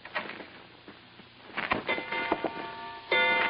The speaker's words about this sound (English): I thought at first I'd set off a new polite kind of burglar alarm, but it was only a grandfather clock tolling out 10 p.m.